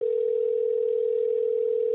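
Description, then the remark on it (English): A steady, clear telephone ringing tone hums for about two seconds without a break, loud, as if heard through the earpiece while an outgoing call waits to connect. “Answer the phone, you cock.”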